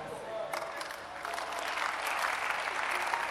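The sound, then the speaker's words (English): An audience claps continuously, a dense patter of many hands that swells and grows steadier over a few seconds, with faint crowd murmur underneath. “I like the way the clapping is becoming generous.”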